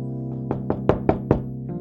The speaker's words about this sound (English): Oh, someone's knocking.